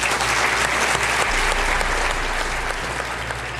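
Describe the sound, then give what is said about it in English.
Steady applause from an audience for speakers including Finnish Foreign Minister Elina Valtonen and NATO Secretary General Jens Stoltenberg: dense, continuous clapping that stays loud and even for the whole stretch, with a faint low hum underneath and no voices. “So give them an applause.”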